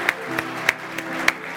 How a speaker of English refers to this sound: Amen. Can we give the Lord a hand clap? Hallelujah.